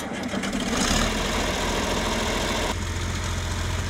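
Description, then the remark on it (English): The diesel engine of a 1972 John Deere 4020 Power Shift tractor idles steadily in southern Indiana, a low, throbbing rumble with a regular pulsing beat that holds constant throughout, with no voices. “We have behind us a 1972 John Deere 4020 Power Shift.”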